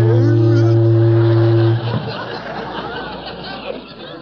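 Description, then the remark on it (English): A single loud, low boat whistle in Pine Ridge blares steadily for almost two seconds and then cuts off, leaving a murmur of crowd chatter and soft laughter. “Next thing you're going to tell us, you're hearing a boat whistle here in Pine Ridge.”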